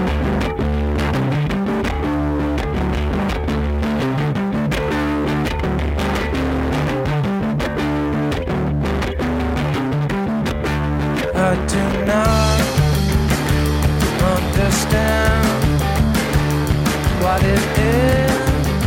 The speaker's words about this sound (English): Interestingly, the intense, muffled distortion we hear on his guitar is not produced by an amplifier or an effect pedal